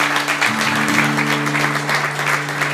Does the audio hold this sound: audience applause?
yes